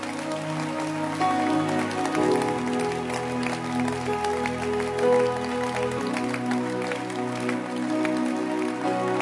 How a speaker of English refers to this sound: Clap your hands. Thank you very much. God bless you. Keep clapping your hands.